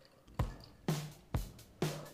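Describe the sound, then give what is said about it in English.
American beer from North Carolina glugs out in four evenly spaced gurgling bursts, each a wet splash with a short fizzy tail, fairly quiet, with no voices. “We're pouring without him.”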